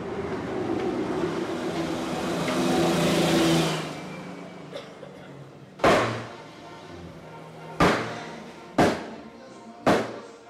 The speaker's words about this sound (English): This is El Parian, and that thumping you hear is a man butchering goats.